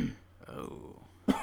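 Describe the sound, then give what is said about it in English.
A short, throaty cough from a sick person bursts out near the end, fairly loud, after a quieter rough throat sound at the start and a stretch of low murmuring in between. “I'm sick, y'all, so you might hear me coughing.”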